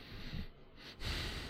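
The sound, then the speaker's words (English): A person sniffs and huffs at a vinegary Red Rock Deli chip in two broad, noisy bursts of breath, breathing out as much as in, a short gap between them, with no talking. “Gee, you're really huffing. You're breathing out as much as you're breathing in”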